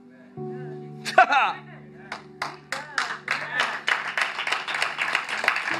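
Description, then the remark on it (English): An audience claps in a steady rhythm that builds and thickens into loud, continuous clapping, with sustained low musical tones underneath and a brief vocal outburst just before the clapping begins. “You know why you're clapping?”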